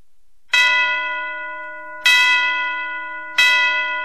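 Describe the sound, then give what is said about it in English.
Ringing bells open a song: three loud, resonant strikes spaced about a second and a half apart, each with a bright shimmering tone that slowly fades before the next. No voices. “I immediately go back to when I was in high school at Sam Houston High School in Moss Bluff, Louisiana, and the local AM station, the Friday after Thanksgiving, would play this song, and when you heard this song, you knew it was Christmas.”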